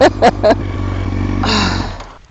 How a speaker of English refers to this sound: It's the position, it's the power, it's the centre of gravity, it's everything. No wonder they use these as racing bikes.